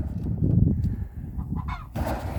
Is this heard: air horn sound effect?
no